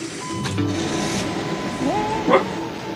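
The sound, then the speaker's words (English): A pet dog named Bowie barks twice, a short sharp bark early on and another near the end, set against a steady low hum and faint background noise. “Bowie, why are you barking?”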